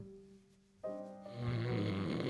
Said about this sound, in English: Listening to Defibulous snore away, you lay in your bed, staring at the roof.